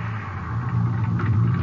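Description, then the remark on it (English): A car engine rumbles steadily from inside the vehicle, a low, continuous drone with a slight swell toward the end, as the car pulls over on an empty highway at almost 4 a.m., about 20 minutes from Odessa. “Guess I can stop any place on this highway. I haven't seen another car in an hour.”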